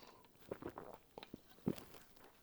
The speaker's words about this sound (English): I think I need a hit of seltzer. That's what I'm doing right now. I'm gonna drink a big sip of seltzer just for you. Not for you, for me.